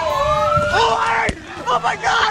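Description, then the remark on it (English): A dense, agitated crowd of protesters demonstrating at night against the police shooting of Stephon Clark shouts and clamors as a car drives through them, with a siren-like wail sliding through the noise and a sharp bang cutting in partway through. “Part of the video that was shot the night that the car drove through the crowd and nicked this woman was recorded and released.”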